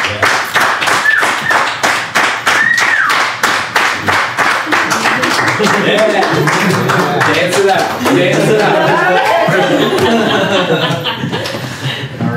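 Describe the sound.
Loud, steady clapping runs through the whole clip in quick, fairly even beats. Voices and cheering-like calls rise underneath it partway through.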